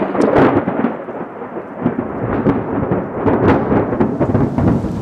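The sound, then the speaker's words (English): Heavy, unexpected rain pours down on a school sports day in a dense, steady roar, with rumbling thunder rolling underneath and sharper crackling bursts breaking through. It stays loud throughout, with no voices. “It was heavy and unexpected, but short nonetheless.”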